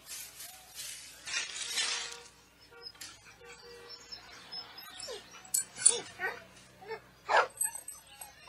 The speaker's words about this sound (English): cute dog. She has a fractured fibula, given a mild sedative.